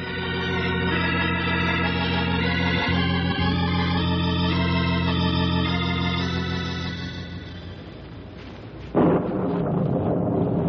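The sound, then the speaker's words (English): A long, heavy roll of thunder from an approaching storm rumbles loudly and steadily, easing off slightly before a sudden sharp crack bursts in near the end and rumbles on. No one speaks. “That storm isn't going to wait too long to rain on us.”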